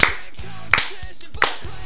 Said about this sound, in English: Thank you for trying. You failed miserably. You get the sarcastic clap.